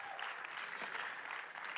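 Steady applause from an audience, a dense wash of many hands clapping at an even loudness throughout, with no voices standing out.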